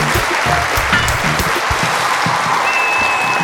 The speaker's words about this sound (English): Ooh, that was extra excited applause for you today. Was there like a whistle there that wasn't there before?